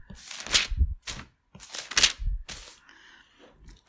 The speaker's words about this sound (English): So Acts 1, as I get my pages turned here.